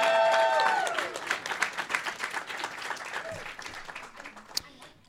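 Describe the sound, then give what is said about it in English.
An audience at a live Relay FM show breaks into steady, lively applause as a guest from Franklin-Christoph is invited on stage, dense overlapping claps lasting several seconds, opening with a brief voice over the first moment before gradually thinning out toward the end. “Give us a round of applause, everybody”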